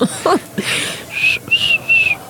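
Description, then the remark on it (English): A person attempts to whistle, producing three short, steady high notes in a row after some breathy air and a brief vocal sound, the whistle thin but clear. “That sounds like a whistle.”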